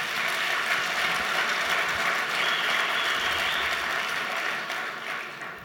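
audience applauding

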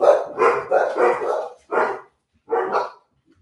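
dogs barking

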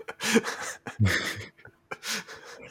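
dog panting

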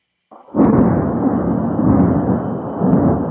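thunder

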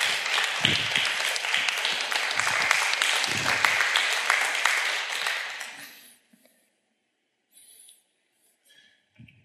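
audience applause

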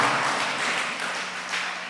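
a person clapping

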